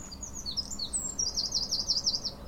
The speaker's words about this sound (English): Amazing amount of bird life.